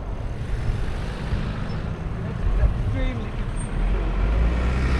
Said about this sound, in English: This is one of those sort of wannabe shared spaces. But unfortunately, it's just got too much motor traffic trying to get through, so it ends up being might is right.